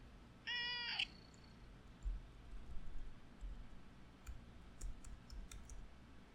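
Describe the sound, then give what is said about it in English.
A cat gives one clear meow lasting about half a second, followed by quiet background noise and a few faint, scattered clicks. “I lost it because of my beautiful cat.”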